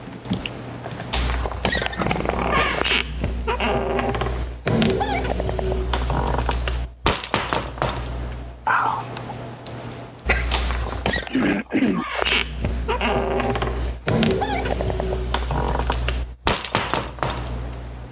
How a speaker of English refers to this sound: Is it the outside of a door, not the door itself, but like a screen door?